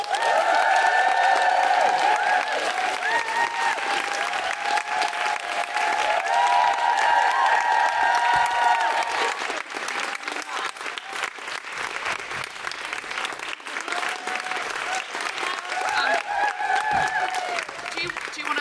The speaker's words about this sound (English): Please put your hands together and make general woo-hooing noises for Susan Wokoma.